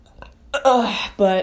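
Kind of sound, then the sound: human body sound, burp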